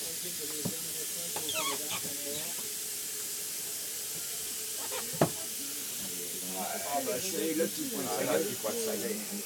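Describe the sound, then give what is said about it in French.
A steady, continuous hiss of steam escaping from a pressure cooker as its small valve cap is lifted after the heat is turned off, fairly loud throughout, while people talk over it. “Soulève le bouchon. Non, il faut soulever le petit bouchon.”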